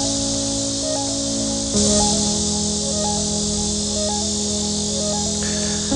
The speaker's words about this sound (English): So I don't know whether that's a bird making a sound or whether it's crickets. People tell me that that's crickets, that it's crickets rubbing their hind legs together. But I don't know, it's just an incredible noise.